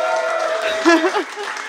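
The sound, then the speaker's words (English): Steady audience applause for a store's staff at an evening event, a dense wash of clapping that continues throughout, with a voice briefly calling out over the crowd partway through. “Oh, also a round of applause for the former Skylighters.”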